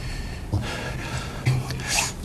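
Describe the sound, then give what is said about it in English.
Three sharp nasal sniffles from President Trump during his speech to the American public, fairly loud, coming at uneven intervals over a low background hum, with no talking in between. “With 1,239 awkward Adderall sniffles last night during his speech to the American public.”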